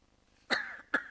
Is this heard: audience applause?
no